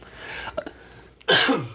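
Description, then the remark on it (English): A man's single loud throat clearing, a rough raspy burst lasting about a third of a second, preceded by a couple of faint breathy clicks against quiet background hiss. “He had to clear his throat for that one, guys.”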